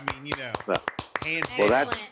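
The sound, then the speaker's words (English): A voice talks while a handful of sharp, crisp claps ring out in a loose, uneven rhythm underneath, as a brief round of applause fades. “That round of applause goes to everybody, especially.”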